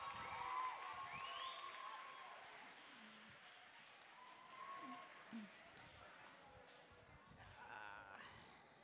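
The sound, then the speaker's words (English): An audience applauds steadily for several seconds for a volunteer being introduced: a dense wash of clapping with scattered voices and cheers mixed in, holding fairly even before easing slightly toward the end. “I need you guys to give your undivided attention and a big element round of applause”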